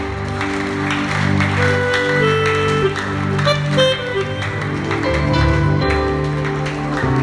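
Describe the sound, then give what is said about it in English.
An audience claps for Jesus steadily and continuously, a dense crackle of many hands over sustained musical tones, keeping an even loudness throughout. “The way you are clapping, I see you don't know who you are clapping for.”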